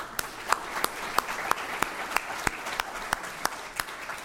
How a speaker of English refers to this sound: So round of applause for them.